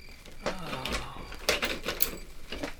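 door being opened

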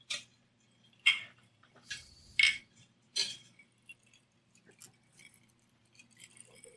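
glasses clinking

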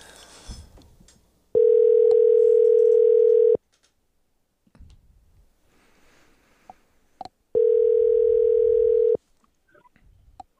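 phone call dialing tone

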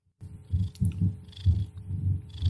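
cat purring loudly

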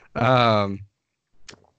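loud gulp

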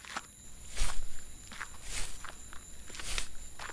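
footsteps walking outdoors

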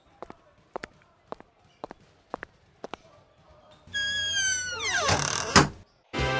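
door closing

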